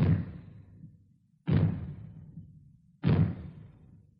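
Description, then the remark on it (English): Three loud, booming bangs from maroons, sounded in short succession as a fallout warning, go off at steady intervals of about a second and a half, each with a sharp onset and a long rumbling decay. “When fallout is expected, you will hear three bangs in short succession. They will be sounded by means of maroons like this.”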